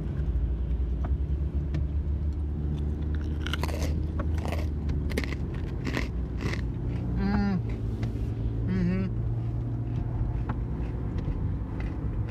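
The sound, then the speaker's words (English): Crunching of Snyder's honey mustard and onion pretzel chunks: a series of sharp, crisp bites and crackles around the middle, then chewing, heard over a steady low engine-like hum with a few brief voiced sounds. “Such a satisfying crunch.”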